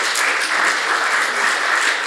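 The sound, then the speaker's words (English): Steady, dense applause from a church gathering during a sermon, many hands clapping at once, a constant loud wash of claps holding at an even level throughout, with no voices standing out. “For all of those of you, you can applaud if you want.”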